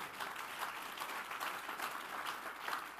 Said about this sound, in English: Give the Lord a mighty clap here.